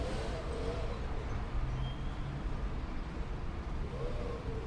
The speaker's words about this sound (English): Right, I don't know, can I get peace in this Spanish park? I'm in the middle of a fucking city centre. That leaf blower is going to come towards us and it's only going to get louder.